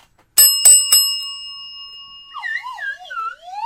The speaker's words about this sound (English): But for now, it's time to ring the news bell.